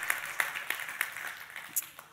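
A smattering of audience clapping at Rev Church, sharp claps landing roughly every third of a second at first, then thinning out into scattered, fainter claps. No voices are heard.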